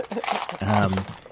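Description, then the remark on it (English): Dice clatter and tumble across a hard tabletop, rolled to randomly decide how many years have passed in a game campaign, a quick rattling burst of small clicks lasting about a second, with a brief voiced murmur underneath. “You could also leave it to the fate of the dice.”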